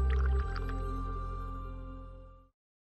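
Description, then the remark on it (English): Soft liquid sloshing and dripping as a Lipton self-jiggling black tea bag jiggles in a cup, over a steady low hum, fading out after a couple of seconds. “Bag jiggle technology guarantees even infusion and aids milk disbursement for those who like a splash.”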